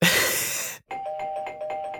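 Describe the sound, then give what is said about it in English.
A loud burst of noisy sound gives way to a trivia bell, an electric bell ringing with a steady bright tone and rapid rhythmic pulsing that continues to the end, with no voices. “That's the trivia bell”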